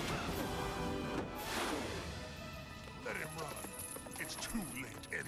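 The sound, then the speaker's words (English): Horse hooves clip-clopping at a steady pace, mixed into a busy, fairly loud soundscape with other noises and voices underneath. “And the Machine Empire uses horses on the moon.”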